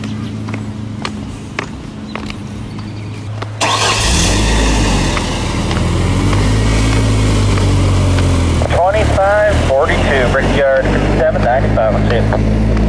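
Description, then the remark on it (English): A car engine rumbles steadily at idle, then swells abruptly into a louder, fuller roar that stays continuous, with a voice briefly audible near the end. “Where that car is going. Stop down there.”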